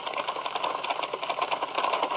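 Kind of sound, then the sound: household object, typewriter typing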